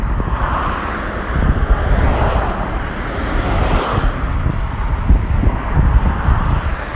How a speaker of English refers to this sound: Cars, trucks, vans, all sorts. It's like it's a busy road that connects connects the town I live in with like London, Sevenoaks, like major towns and cities nearby. So it can be very busy.